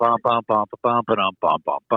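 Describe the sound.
A single voice hums a rock guitar riff, imitating the guitar with a quick, choppy run of about eight punchy, clipped notes separated by short gaps.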